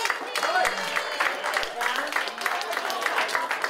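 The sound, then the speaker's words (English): A room full of people claps steadily for a few seconds in answer to being asked to clap if they are getting older, a dense patter of many hands at moderate volume, with some faint crowd murmur mixed in. “Who's getting older in the room? Clap if you're aging.”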